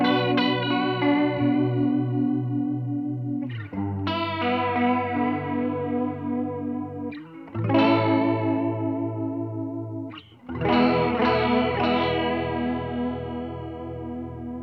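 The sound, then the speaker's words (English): Electric guitar chords drenched in a CE1 chorus pedal's shimmering, wavering modulation, strummed in four sustained phrases that ring out and slowly decay. No one speaks. “And it's for the CE1.”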